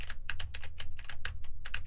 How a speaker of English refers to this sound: Now I am typing on a keyboard with Gatoron blue switches to see how much of my voice versus how much of the keyboard it picks up.